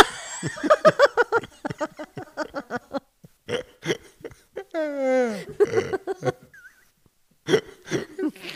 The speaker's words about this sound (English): that a good belch? Yeah, it felt awesome. I feel better now.